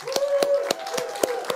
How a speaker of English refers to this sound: We thank all of our fathers. I just want to celebrate our fathers. Y'all give a big hand clap.